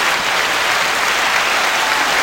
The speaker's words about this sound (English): And let's give a big round of applause right quick.